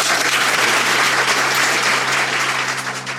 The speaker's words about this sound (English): Great. Please join me in a round of applause for Nancy Fund.